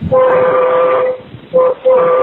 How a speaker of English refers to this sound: have you ever been next to a train where they have the horns?